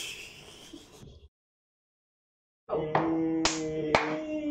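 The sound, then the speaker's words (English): A few sharp hand claps, about three, land unevenly over a steady droning tone, coming after a stretch of noisy rustling and a brief pause of silence. “I thought she was clapping.”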